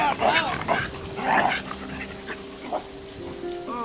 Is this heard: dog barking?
yes